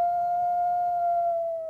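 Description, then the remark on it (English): A single long, steady howl of a wolf holds one clear pitch, then dips slightly as it trails off, heard alone. “Let's live and let howl.”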